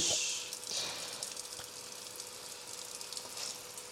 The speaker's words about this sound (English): Listen, ASMR kitchen. Oh, I'm washing the dishes.